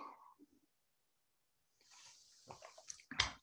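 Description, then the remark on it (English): A brief pause, then quiet sipping of water: a soft airy slurp followed by a few wet mouth clicks and a louder gulp near the end. No one speaks. “I'm letting you sit with that for a second while I take a sip of water.”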